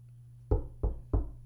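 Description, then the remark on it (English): Three firm, evenly spaced knocks on a door, loud, with a steady low hum underneath and no voices. “Who that at the door?”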